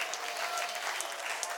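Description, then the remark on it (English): An audience claps their hands in a steady, dense wash of applause, many overlapping bright claps at an even loudness throughout, with no voices standing out. “Sometimes we need to clap our hands because we're told to clap them.”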